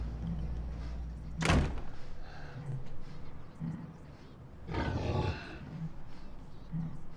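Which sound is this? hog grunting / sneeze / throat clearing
hog grunting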